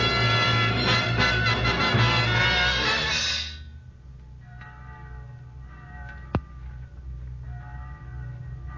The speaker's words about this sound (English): Church bell? Oh, yes, yes, of course. Church bells are on God's side.